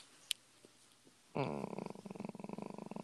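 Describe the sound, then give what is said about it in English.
A person imitates a cat's purr, a rapid, rattling vocal trill that starts abruptly after a brief click and continues steadily, fairly loud, with no talking. “You sound like a cat right there.”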